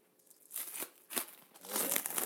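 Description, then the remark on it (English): Crinkling, tearing plastic packaging of meat being pulled open, with several sharp rips and continuous rustling crackle, no voices. “I'm undoing my meat.”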